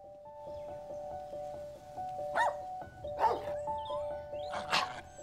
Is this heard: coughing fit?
no